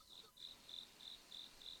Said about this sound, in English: The cricket's back. I think there's two of them funny. Actually now. Yeah. Can we hear? Okay. Lower the music. Ready? Everyone shut up and listen to the cricket for 2 seconds. Ready? Go.